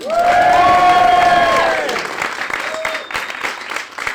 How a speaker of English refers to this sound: Do the applause, don't just do a bit of applause down there and a bit of applause down there. It's our first night, it's the opening of our first night. Ladies and gentlemen, applause.